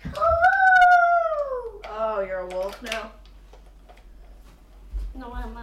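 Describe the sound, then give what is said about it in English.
A 5-year-old boy in Rhode Island, pretending to be a werewolf, howls like a wolf in a high voice: one long, drawn-out howl that slowly falls in pitch, a shorter wavering one right after, then a brief third starting near the end. “Oh, you're a wolf now? No, I'm a werewolf.”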